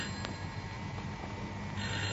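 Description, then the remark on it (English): An unanswered telephone rings continuously in a flat, its steady electronic trill filling the whole moment at moderate volume, with no voices. “Whoever's ringing, they're very persistent.”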